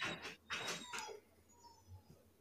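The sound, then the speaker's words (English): Dogs scratch at a door in three quick, rasping bursts over the first second, then the scraping fades to faint, scattered rustles and a low thump. “I don't know why right now they've chosen to scratch on this door of all doors.”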